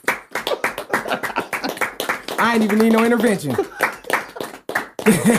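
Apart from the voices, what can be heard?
hand clapping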